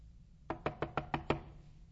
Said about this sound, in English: And as he arrives there on the scene, he knocks on the door, and maybe inside everything went quiet.